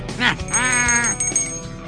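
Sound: hand bell ringing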